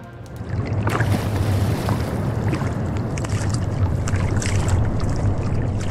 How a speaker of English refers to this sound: We're now thousands of miles away, floating in the middle of the Pacific Ocean. Now, we're on a boat, of course,